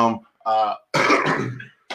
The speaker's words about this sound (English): So, you start coughing at him?